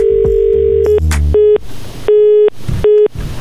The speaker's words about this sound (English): Well, that first person got so excited, the phone went dead. Let's try that again.